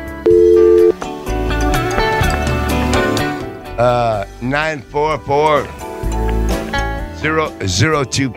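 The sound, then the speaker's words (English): A steady telephone dial tone hums for about a second, followed by a dense run of tones as a number is dialed to call a truck driver, then voices take over. “So let's call him real quick.”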